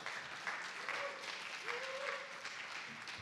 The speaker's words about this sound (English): Let's give him a nice hand of applause there.